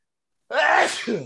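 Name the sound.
sneeze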